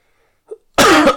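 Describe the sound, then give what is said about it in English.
A brief soft catch in the throat, then a loud, rasping throat clearing that fills the last half-second of an otherwise quiet moment. “Sorry, I got a little bit of a blah in my mouth.”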